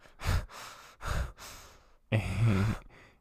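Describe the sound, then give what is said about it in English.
Heavy, close-miked breathing: a run of quick, loud breaths in and out, then a longer, voiced exhale like a sigh, with no talking. “God, dude, I feel like you can hear me breathing so much more, though.”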